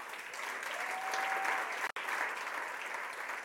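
A standing church audience at ICF Rome claps steadily in dense, sustained applause to welcome their regional director, with no voices standing out. There is one sharp break in the middle, and then the clapping continues at the same level.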